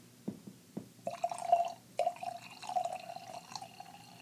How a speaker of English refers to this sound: Wow, that is the most satisfying wine pour sound.